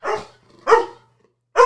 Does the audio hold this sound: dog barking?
yes